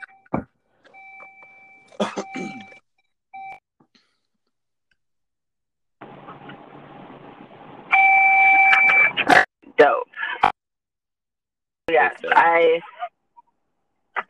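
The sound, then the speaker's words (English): A car starts up with a steady engine rumble as electronic warning tones beep in short sustained bursts, joined by sharp clicks, with a voice briefly talking near the end. “because I'm gonna start my car.”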